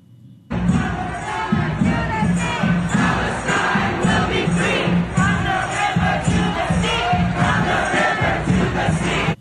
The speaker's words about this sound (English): All right, and the banner says Gays for Gaza right there, and at the same time they're chanting for the destruction of the state of Israel.